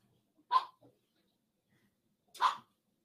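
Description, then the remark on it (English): Two sharp barks from agitated dogs, about two seconds apart, with quiet stillness between them and no talking. “Dogs are getting messed up here. They don't like all this funny sound.”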